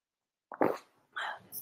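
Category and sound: human body sound, sipping tea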